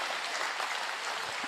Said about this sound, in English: Can we give God a clap offering of praise?